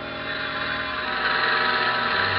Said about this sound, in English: Then I heard it. Marion's plane. And then I saw her coming into land.